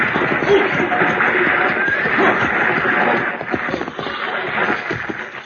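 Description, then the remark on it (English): Hooves of an approaching six-horse stagecoach team clop steadily on hard ground, dense and continuous, with a horse whinnying briefly amid the clatter; the rumble stays loud throughout. “Driving a six-horse hitch ought to keep him awake.”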